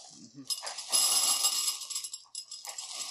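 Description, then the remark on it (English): Trix cereal pieces pour into a glass bowl in a dense, bright rattle of tiny clinks that runs about three seconds, with a brief lull before the pouring picks up again. “Well, okay, kids, prepare for loud noise as we clink into a glass bowl.”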